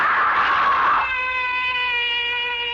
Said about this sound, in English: Why am I screaming? Just a dream. I'll stop screaming.